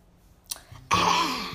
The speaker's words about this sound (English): Let me take a little sip of my beverage.